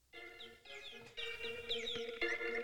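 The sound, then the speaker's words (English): A phone wake-up alarm set for 5:45 plays a birdsong tone: bright, repeated chirps and tweets layered over steady electronic notes, continuous and fairly loud, with no one speaking. “You hear the birds?”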